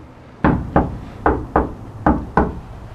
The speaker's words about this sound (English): How was that knock? Was it, like, unassuming and friendly? I don't think that was a scary knock.